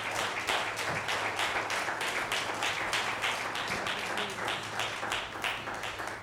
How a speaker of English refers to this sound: Let's give the Lord one more hand clap of praise here this morning.